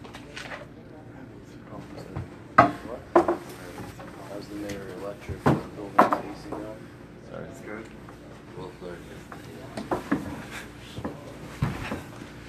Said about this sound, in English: Start from there, and then we will open this door. Yeah, it's cool in there.